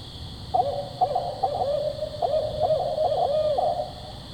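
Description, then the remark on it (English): A recorded barred owl call plays as a series of rhythmic, wavering hoots, fairly loud and clear over a low background hiss, with no voices present. “You're listening to the barred owl.”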